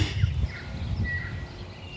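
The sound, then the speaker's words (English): A bellbird sings a few thin, ringing whistled notes, faint against a steady low outdoor rumble, with no one speaking. “You can hear bellbird.”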